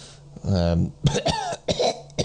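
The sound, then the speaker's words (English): A voice imitates a badly wounded man's gasping and coughing: a strained, drawn-out groan followed by a few harsh, ragged coughs, fairly loud, with no other sounds around it. “He's very, very wounded, so he's not got, he's sort, it's more like a, you sort of bring him to, but he's sort of gasping and maybe coughs a bit of blood up.”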